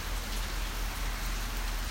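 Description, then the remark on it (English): Steady rain falls on the roof of a pavilion in Lower Allen Park, a continuous dense patter with a low rumble underneath, even and unbroken throughout, with no voices. “I'm sitting down here under a pavilion, watching the rain.”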